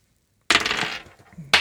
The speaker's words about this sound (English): I drop a dice. There we go.